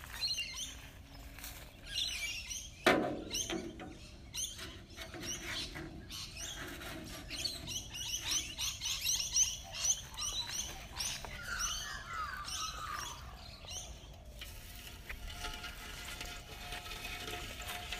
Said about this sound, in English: Lovely birds, listen.